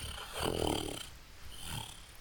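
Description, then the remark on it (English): A voice imitates a pseudo-dragon purring as it is scratched under its chin: a low, rumbling, rattly purr swelling for about half a second, then a softer second rumble, with no words spoken. “And you hear this ginormous, it's not ginormous, actually, this pseudo-dragon just start to purr.”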